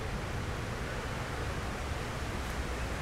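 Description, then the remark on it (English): A steady, unbroken roar of rushing water from an infinity waterfall at a monument to the towers, set in the footprint of one of the buildings, even in loudness throughout, with no voices and no distinct splashes standing out from the dense wash of sound. “So the monument to the towers incorporates the footprints of the buildings and creates what you will see shortly. An infinity waterfall effect.”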